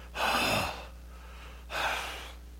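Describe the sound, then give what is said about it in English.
Two forceful breaths blown hard through the nostrils, a long harsh exhale and then a shorter one after a pause, loud like an angry snort, with no talking. “It can mean, it's the breathing through your nostrils, it's like the animal, but it's filled with emotion.”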